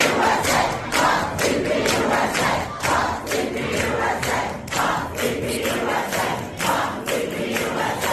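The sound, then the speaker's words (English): A crowd of protesters chants and shouts loudly and continuously, with rhythmic bursts of yelling and heckling rising and falling over a dense wall of voices, trying to shut down a speaking event on a college campus in Albany. “And like clockwork, some deranged protesters showed up and used the heckler's veto to try and shut down the event.”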